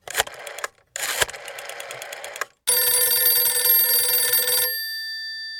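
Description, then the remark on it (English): A Skype call ringtone: two bursts of rapid, buzzing pulses, then a steady bright chime tone that holds for about two seconds before fading out. No voices. “listen to one of our Skype phone calls, where Mela calls in”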